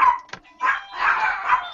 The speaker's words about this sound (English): The dogs aren't happy about it.